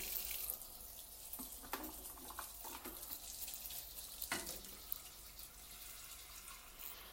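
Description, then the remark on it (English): Water runs steadily from a tap for several seconds, a broad continuous hiss with occasional clinks and splashes as a container fills with water for making coffee. No one speaks. “Let me just get some water.”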